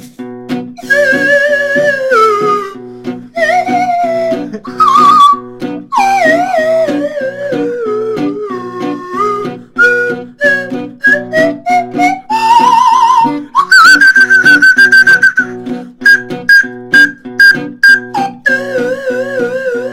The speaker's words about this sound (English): What's this? Slide whistle solo.